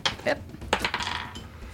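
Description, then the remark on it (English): Dice clatter across a hard tabletop in a quick burst of sharp clicks and rattles, fairly crisp, tumbling for under two seconds before settling, with no voices; a roll for a check during a tabletop game, landing on 14. “14 on the dice plus 7, 21.”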